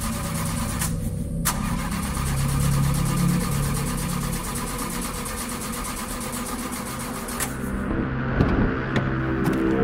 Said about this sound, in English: Let me try something. You keep saying that, and the car still won't start.